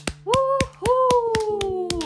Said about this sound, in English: Just give yourself a round of applause.